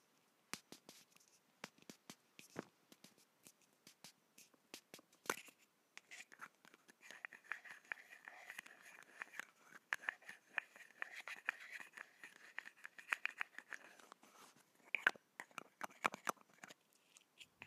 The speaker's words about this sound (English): And now I'll be tapping on my perfume. I'll open it, and I know the sound will be very satisfying.